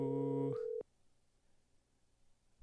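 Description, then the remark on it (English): A loud, steady electronic telephone busy tone sounds for under a second, then cuts off abruptly, leaving faint background hiss and near silence. “He must be on the other line.”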